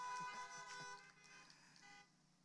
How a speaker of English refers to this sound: Come on, can I get a good hallelujah honk from somebody right now? Amen.